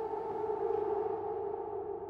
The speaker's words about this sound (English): The air raid siren, it literally comes up as something bad is about to happen. I get goosebumps across my whole body. It's not like any siren. It's a really creepy siren. It is the sound of death.